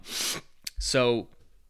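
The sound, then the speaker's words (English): A quick, breathy sniffle through the nose from seasonal allergies after cutting grass, followed by a soft click and a brief voiced murmur from the same person. “And if you hear me sniffling, it's because I cut the grass earlier and the allergies are just murdering me today.”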